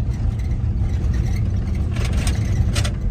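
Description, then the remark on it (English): Heavy vehicles, two different kinds of track drags and a water truck, rumble steadily with a deep engine drone while working a dirt race track, gritty scraping surging twice as the drags pull across it. No voices are heard. “We say we've got two different kinds of drags working on the track and a water truck.”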